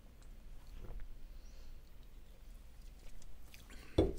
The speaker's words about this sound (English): You know what that means? It must be time for another sip of Rockstar.